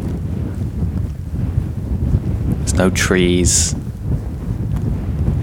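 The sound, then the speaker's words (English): Strong wind roars and buffets the microphone throughout, a steady low rumble across exposed, wide open moorland of rolling hills, with a person speaking briefly in the middle. “and it's so exposed. It's always windy.”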